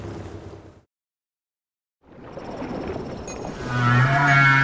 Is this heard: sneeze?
no